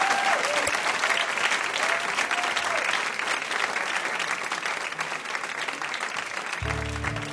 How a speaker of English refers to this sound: Let's have one more round of applause for Tony